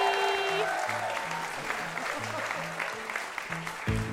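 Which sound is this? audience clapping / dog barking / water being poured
audience clapping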